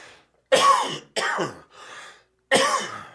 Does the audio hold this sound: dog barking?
no